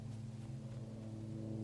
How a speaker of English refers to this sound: A plane is flying directly overhead, and the sound of its engines is like the rumble of a distant washing machine.